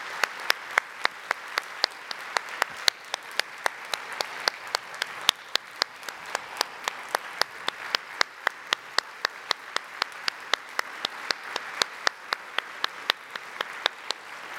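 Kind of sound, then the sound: crowd, round of applause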